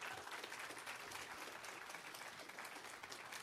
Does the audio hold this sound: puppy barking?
no